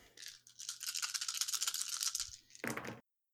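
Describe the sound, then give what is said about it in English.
Challenge dice being rolled rattle and clatter in a fast, dense stream of clicks for about two seconds, then a brief pause and a final short burst of tumbling clacks. No one speaks. “You can roll your challenge dice and then decide.”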